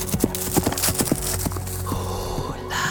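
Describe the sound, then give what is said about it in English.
Horse hooves clip-clop in a quick, uneven rhythm, sharp clattering beats that gradually fade and thin out, leaving a steady low rumble beneath. “And she rode away to war in her father's place.”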